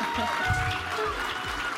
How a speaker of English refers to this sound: That is the sound of everyone clapping for us at the Sphinx Theater in the beautiful Sheraton in downtown Seattle.